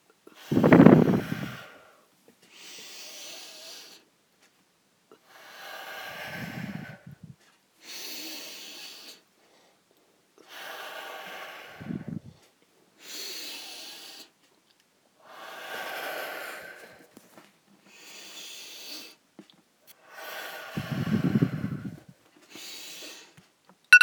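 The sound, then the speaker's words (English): Slow, steady breathing during a 5-second rest in an exercise workout, about nine to ten cycles of inhales through the nose followed by audible exhales through the mouth, with a few louder, snort-like breaths. No talking. “Okay, now another 5 seconds of resting, breathing in through the nose, out through the mouth.”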